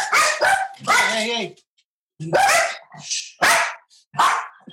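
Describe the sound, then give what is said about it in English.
The speaker's dogs bark loudly in a rapid, irregular series of about half a dozen sharp, throaty barks with brief pauses between, with no voices alongside, apparently because somebody is getting close. “My dogs. Must be somebody getting close.”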